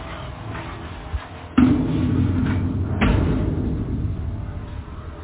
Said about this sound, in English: I better go in and shut the door.